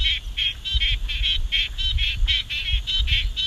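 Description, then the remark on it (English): A frog of the squelching call dialect of the Swan Coastal Plain calls in a steady, rapid series of short, squelching, mid-high pulses, roughly three per second, repeated without pause over a low background rumble; recording by Dr. Jody Rowley. “That extra bleeding tree frog sound in there, like a little bar, that was from Dr.”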